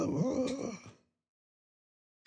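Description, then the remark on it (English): A person imitates heavy breathing with one drawn-out, raspy, groaning breath, fairly loud, lasting about a second before it cuts to silence. “You're getting better at your breathing.”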